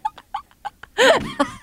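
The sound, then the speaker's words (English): A woman imitates the Aflac duck, with a run of short, clipped nasal bursts building to a loud, drawn-out quack and one last quick honk. “She's doing the Aflac duck.”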